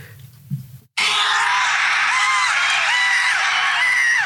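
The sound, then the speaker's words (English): After a brief low rumble and a moment of silence, a huge crowd at WrestleMania erupts into loud, sustained screaming and cheering as Stone Cold comes out. The noise fills the space and keeps going without letting up. “Those screams. That's me, bro.”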